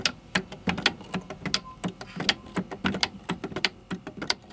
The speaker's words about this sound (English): Sewing machine there, which you wind a handle, and the wooden needle on the front of the machine goes up and down. And you got your little spool of thread as well.